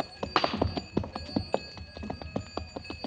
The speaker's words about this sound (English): As I stood and listened to the camel bells fade away in the distance, I wondered if it might not be a glorious thing to go to Kafiristan and be a king.